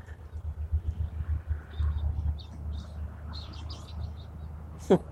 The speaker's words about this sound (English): The birds are really nest building, so we're definitely kicking into spring.